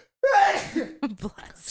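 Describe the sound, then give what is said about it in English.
A single sneeze: a quick, rising, breathy intake that bursts into a loud, hissing expulsion, followed by a moment of quiet murmuring speech. “Bless you.”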